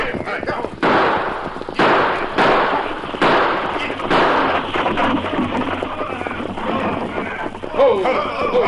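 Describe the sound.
Horses gallop in with a rolling stagecoach, a loud rumble of pounding hooves and noisy wheels in rhythmic bursts, with voices calling out near the end.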